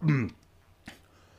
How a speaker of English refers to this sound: So, excuse me, cough and a burp.